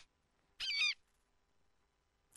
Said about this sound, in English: That was, in fact, a sound effect of an eagle.